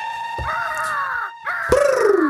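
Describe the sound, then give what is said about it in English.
Two loud, drawn-out bird calls, harsh and crow-like, one after the other with a brief gap, with no talking. “Transition song? Birdsong.”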